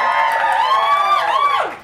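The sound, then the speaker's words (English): A loud, high-pitched whooping cheer from a live audience cheering for Colin Firth, held for almost two seconds before the voices slide downward and cut off. No speech rises above it. “Okay, so cheer for Colin Firth.”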